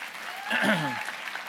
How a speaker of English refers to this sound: And if you would give her a round of applause as she joins me.